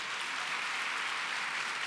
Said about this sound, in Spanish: Da otro aplauso a Cristo, lo digo.